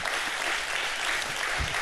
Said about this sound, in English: Give God a better clap offering than that.